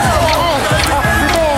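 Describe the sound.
A dense, steady murmur of a large crowd heading home from a stadium after an Arkansas game, many overlapping voices blending into a continuous babble, with occasional louder calls and thumps rising above the hubbub.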